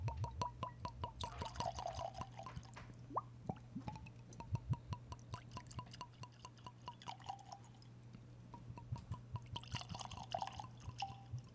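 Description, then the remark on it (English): Armagnac-finish cigar blend whiskey glugs and splashes into a glass in a long pour, with rapid dripping plops, a brief lull near the end, then another burst of pouring over a low steady hum. “To anyone at home, that sounds like we poured like 9 ounces.”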